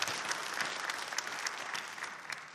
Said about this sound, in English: Yeah, we can give a round of applause to Barry's as well.